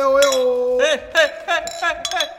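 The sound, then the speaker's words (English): Glasses clink together in a toast, several bright chimes spread over a couple of seconds, ringing over a sustained tonal hum and overlapping voices. “Hey, cheers. Cheers, guys.”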